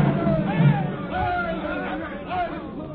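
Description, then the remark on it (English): A dense crowd of people pouring over a square in a dramatization of the Boston Massacre murmurs and shouts together in a steady, restless babble, many voices overlapping with occasional rising calls, no single voice standing out. “He's down, but the people still pour over the square.”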